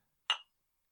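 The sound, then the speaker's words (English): A single quick clink of drinks tapped together in a toast, bright and short with a brief ringing edge, heard alone in an otherwise quiet moment. “Cheers. Cheers.”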